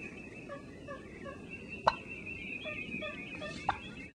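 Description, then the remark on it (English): Two sharp, short turkey clucks, spaced about two seconds apart, stand out over a steady background hum and faint higher chirping. “This is like a standard cluck.”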